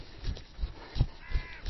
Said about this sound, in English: It's a rook, actually. It's a crow.